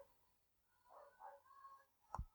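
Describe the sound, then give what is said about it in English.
A dog gives a single short bark inside a house, preceded by a few faint, whine-like tones; no one talks, and it is otherwise quiet. “The dog's actually not on the DVD. It's in our house.”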